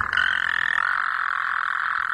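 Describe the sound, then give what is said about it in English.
A dense chorus of many frogs croaking together, a steady high-pitched trilling wall of sound that stays loud and continuous throughout, with no voices present. “This is just a clip of a bunch of frogs croaking.”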